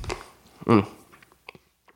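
A wet sip from an iced McCafe coffee drink from McDonald's, followed by a short voiced sigh or swallow and a few faint mouth clicks and clinks, with no talking.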